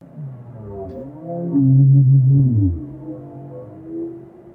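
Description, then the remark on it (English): A low, mournful whale call, with several moaning tones sliding up and down and swelling loudest in the middle, heard alone with no talking. “That's a whale.”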